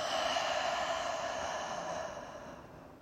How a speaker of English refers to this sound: So inhaling through the nose for 4, holding for 7, and then exhaling for 8. So a long exhale through the mouth.